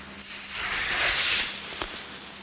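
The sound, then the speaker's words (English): Skis carve across icy snow on a ski mountain in Vermont in one long, hissing scrape that swells and fades over about a second, followed by a brief sharp crunch. No voices. “I don't get to see my family often now, much less get the chance to ski, but the sound of skis crunching and carving on ice will always bring me back to those early days.”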